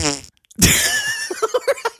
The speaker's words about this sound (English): I've got a couple farts in there. All right, that goes without saying. You knew there were going to be farts in the soundboard, right?